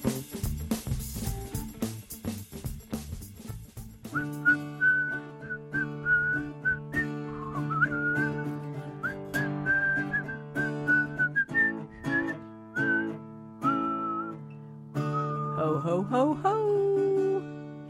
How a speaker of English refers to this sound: It's that time of year for guitars, ukuleles, and Christmas whistling. Whistling?